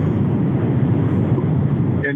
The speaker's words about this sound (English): Did your plane just take off?